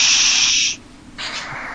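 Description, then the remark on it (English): Loud, harsh radio static hisses for under a second, cuts out briefly to a low murmur, then returns slightly softer. No voices. “Static across the USA. Is that how it sounds?”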